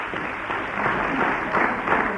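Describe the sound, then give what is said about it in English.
An audience at a church gospel meeting applauds to welcome a preacher, a dense and steady wash of many hands clapping that holds at an even, moderately loud level for about two seconds, with no voices over it. “Give him a clap.”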